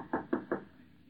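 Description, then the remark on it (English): Three firm knocks on a wooden door, evenly spaced in quick succession, fairly loud, followed by a quiet pause with no voices. “Maybe you don't want to answer the door.”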